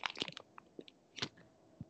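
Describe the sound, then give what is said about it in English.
Someone crunches goldfish crackers: quiet, crisp crackling bites arrive in two short clusters with scattered smaller crunches between, and no talking. “Are you crumbling paper? No, I'm eating goldfish.”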